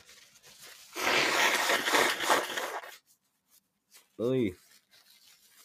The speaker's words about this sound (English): So anyway, hold on, I need to blow my nose.